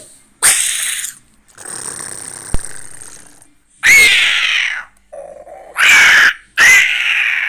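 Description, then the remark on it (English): A person imitates a dinosaur with a series of loud, raspy shrieks and breathy hisses, each burst lasting about a second, separated by short pauses, plus one lower, gruffer growl. “Seemingly incredibly accurate in terms of, you know, shrieking, hissing, all the things.”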